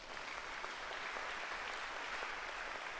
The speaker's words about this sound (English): Is it a powerful scripture? Clap for the Lord.